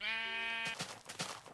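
A single sheep bleat, a wavering, nasal baa lasting under a second, followed by a few short scuffing, rustling noises. No one speaks.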